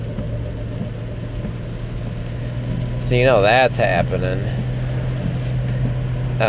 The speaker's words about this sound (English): Sorry, it's raining out, merging on the expressway. This is an adventure.